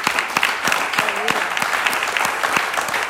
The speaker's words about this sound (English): Y'all clap like you mean it for God's sake. Come on.